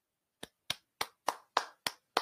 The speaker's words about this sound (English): You hear that clapping? What a way to start off the road trip.